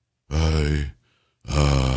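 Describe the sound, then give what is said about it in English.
Two loud, low, rumbling snore-like grunts from a man at a microphone, each lasting over half a second, separated by a brief pause, with no talking. “One point, it sounds like he fell asleep, maybe a snore.”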